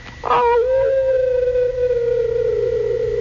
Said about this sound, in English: Now, now, just try a partial echo chamber.